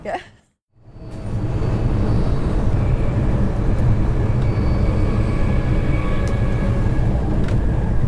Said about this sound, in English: That thundering noise in the background is the train I'm on. So hurtling back to London.